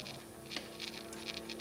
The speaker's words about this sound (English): now I'm going to thumb my nose at convention and eat a bite of waffle with a bite of fried chicken on top of it.